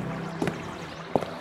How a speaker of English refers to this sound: Our gondola pulls up to the crumbling steps. We climb out of the swaying boat, catching a last whiff of the Venetian Canal on this warm summer evening.